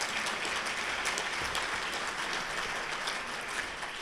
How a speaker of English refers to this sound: And please give our organizing committee and everyone that's made it happen a big round of applause.